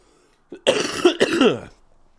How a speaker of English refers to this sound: Cough, cough, excuse me.